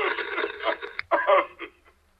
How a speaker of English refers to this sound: I hear voices behind you. Sounds like interference.